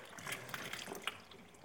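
Water pours steadily into a container and spills over its brim, a continuous rushing trickle broken by small, bright splashes. Fairly quiet, with no voices.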